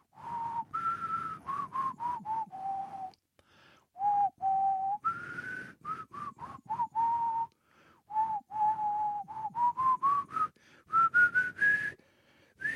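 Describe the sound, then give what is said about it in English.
A person whistles the Star Trek theme tune alone, a string of clear tonal notes rising and falling in short phrases with brief pauses, slightly unsteady in places. “Sorry, I was really struggled with that one. Quite a struggle with that one, whistling that one.”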